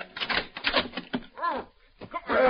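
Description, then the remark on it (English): A key clicks and rattles in the lock of hotel room 503 for about a second, then the door opens. Short bursts of voices come in partway through and again at the end. “Keys. Here, this is the one.”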